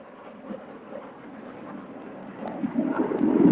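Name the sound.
airplane flying overhead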